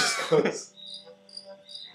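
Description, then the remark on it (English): A short burst of noise gives way to crickets chirping, their high, thin pulses repeating steadily at a modest level with no talking. “Yo, think about how the ad got crickets too.”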